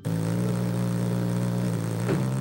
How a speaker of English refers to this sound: The smallest birds, they take their name from the humming sound made by their rapid wing beats. Darting from flower to flower, the hummer poises in midair. He has come to sip sweet nectar.